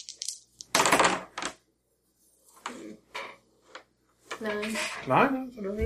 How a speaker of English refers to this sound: Roll 3 dice. I'll see how solid your Japanese speaking contact is.